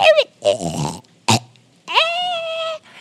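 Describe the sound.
A voice imitates the mewling cough of the Crassus, a creature that keeps coughing after a poison spray hit its tongue: a strangled, rasping yowl, a sharp coughing burst, then a long, drawn-out whining mewl that rises slightly in pitch before trailing off.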